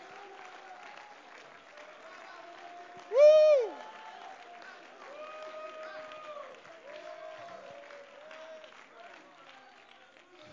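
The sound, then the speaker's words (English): An audience claps hands to give praise to the Lord in a steady, dense patter throughout, with scattered voices calling out over it and one loud, sudden whoop early on. “Come on, let's clap our hands and give a little praise to the Lord.”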